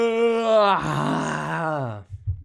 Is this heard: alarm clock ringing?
no